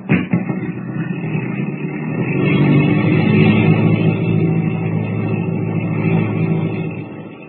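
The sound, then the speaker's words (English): A small radio-controlled plane's engine revs up and holds a loud, steady droning roar, building slightly after a sharp start, with no one speaking. “What will Kent and Jimmy find when the radio-controlled plane comes to rest near the boat?”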